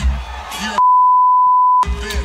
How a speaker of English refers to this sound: You know, you're beeping the wrong words.